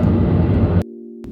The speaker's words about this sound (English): after that rude interruption by all them fucking airplanes